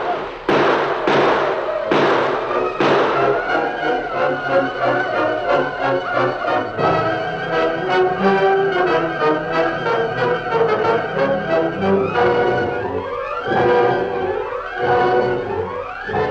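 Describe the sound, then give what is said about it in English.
Rifle shots crack loudly in a rapid volley at the start, then continue within a dense, chaotic battle din of rumbling and clatter, with rising wailing tones near the end, as rifles are fired during a battle at a train. “They have rifles. I don't know where they got them. Pour lead at them.”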